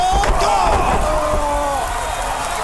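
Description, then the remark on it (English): A heavy slapping wrestling blow to the chest, on the sternum, thuds near the start, with another sharp impact shortly after, all beneath a loud, steady roar of arena crowd noise and indistinct voices. “A body shot that time in the chest, in the sternum.”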